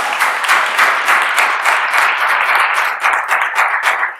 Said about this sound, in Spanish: Yo creo que le podemos dar un aplauso a Dios.